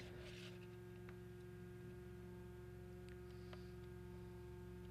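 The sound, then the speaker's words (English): A Time Timer kitchen-style timer being set to 30 minutes: a few soft, scattered mechanical clicks and a brief faint tone against a steady low electrical hum, with no one talking. “30 minutes on the time timer.”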